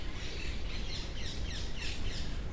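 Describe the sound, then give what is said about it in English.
Several parrots give bright, repeated chirping calls in the National Garden in Greece, in the rain ahead of a thunderstorm, over a steady wash of outdoor background noise. The calls come in short, overlapping bursts, with no voices present. “And I guess we'll leave the parrots now and get out of the rain.”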